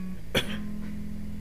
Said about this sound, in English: She coughs.